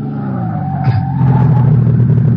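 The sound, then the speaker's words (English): A sedan on a bumpy stretch of road toward the village of Linderheim in Bavaria brakes hard, its tires letting out a long, steady squeal over a deep engine rumble for a couple of seconds, loud, with no voices. “I slam on the brakes.”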